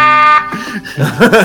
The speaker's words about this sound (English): That deserves an air horn.